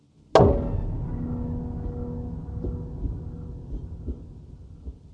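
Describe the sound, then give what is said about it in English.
A single loud wooden gavel strike cracks against a judge's desk in a courtroom, followed by a long, echoing resonant tail that slowly fades, with a few faint low thumps underneath. “He slouched down, and as the curve of his back met the chair, the gavel, seemingly in slow motion, hit the judge's desk one more time.”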